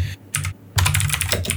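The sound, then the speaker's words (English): Rapid clicking of computer keyboard keys as a question is typed out, fairly loud, with a couple of short bursts followed by a dense run of fast keystrokes. No one speaks. “I'm actually typing it out so I don't forget.”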